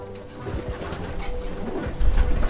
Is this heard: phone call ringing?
no